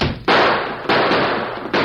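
Three loud gunshots crack out at uneven intervals, each a sharp, full-bodied bang followed by a long fading tail, with no voices between them. The shots are fired at a man in a window.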